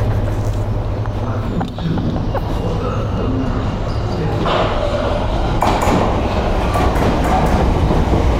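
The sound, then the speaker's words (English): A train rolls into a station platform with a loud, steady rumble and rattling clatter, sharp metallic squeals cutting in now and then, and faint voices in the background. “Oh, my train is coming.”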